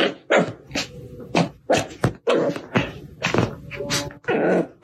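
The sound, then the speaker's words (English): A Cavapoo dog barks repeatedly, sharp yips and barks coming in quick irregular bursts mixed with low throaty grunts and whines, with no talking over them. “They love the dog.”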